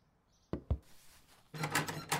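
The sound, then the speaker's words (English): Two heavy thuds against a door at the bottom of the stairs, followed by a loud, sustained rattling and scraping as the door, blocked from the other side, is shoved repeatedly but doesn't give way. No voices. “The doors at the bottom of the stairs here appear to be blocked from the other side.”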